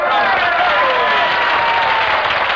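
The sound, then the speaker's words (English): An audience bursts into loud, sustained applause after a contestant says she is from Brooklyn, a dense steady wash of many hands clapping with some voices whooping underneath, holding at full strength throughout. “Yeah, I fail to see why the location of birth should be met with applause.”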